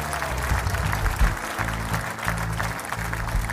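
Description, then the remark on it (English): An audience gives the Lord a clap offering, clapping steadily in a dense, continuous patter of many hands at an even loudness, with low sustained musical notes droning beneath the applause throughout. “If you receive this prophetic anointing, give the Lord a clap offering right now.”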